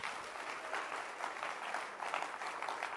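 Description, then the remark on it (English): A group claps steadily for a girl for about three seconds, a dense, even patter of many hands with slight swells in loudness and no voices over it. “Clap your hands for the girl.”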